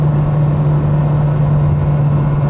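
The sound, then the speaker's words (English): The engine of a 35-year-old Ferrari Mondial T drones steadily while the car is driving, a loud, continuous hum with a strong low tone and no change in pitch. Nobody speaks. “This is why Italian arias were written. That sound.”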